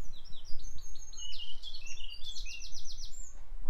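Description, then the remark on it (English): High, bright chirps of two birds in rapid repeated runs, one bird answering another, over a low rumbling background of wind or handling noise. “There's two birds in there.”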